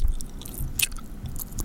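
Wet, squishy chewing with soft smacking and crisp little clicks, repeating in an uneven rhythm over a low, muffled rumble. No one speaks.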